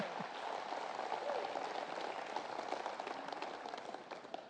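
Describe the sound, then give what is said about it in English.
Steady crowd applause fills the space, a dense wash of many hands clapping at once, moderately loud and sustained without pause, with faint voices mixed underneath, as a speaker comes up to share the word of God. “And y'all give him a round of applause as he comes to share the word of God today.”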